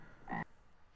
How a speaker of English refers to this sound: Oh, there's a frog. Hold on.